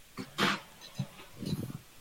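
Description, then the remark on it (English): A dog lets out a few short, sharp barks, one louder burst early on followed by quieter yips and grumbles. “Oh, my dog's being an asshole.”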